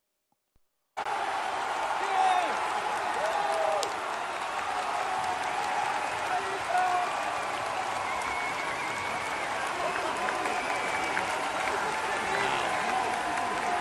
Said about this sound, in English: That's just the applause, and they have a still picture, and you can see the hat, you can see the outline.